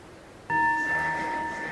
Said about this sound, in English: So maybe take a minute to reflect on it, and then I'll start ringing the bell every minute. I'll ring the bell to start in a minute.